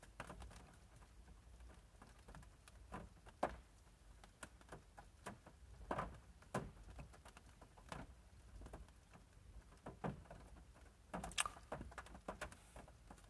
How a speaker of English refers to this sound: I know you guys may hear the rain. You know, I apologize for that. But, this rain effect is kind of how I feel right now, you know?